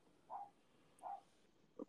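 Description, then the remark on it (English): A neighbor's dog barks three times in a steady rhythm, each bark short, somewhat muffled and faint against a quiet background with no one talking. “Dog barking? My fucking neighbor's dog.”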